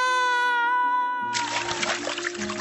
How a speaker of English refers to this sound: Zeus zaps Phaethon off the chariot with his lightning bolt. He falls out of the sky into the river.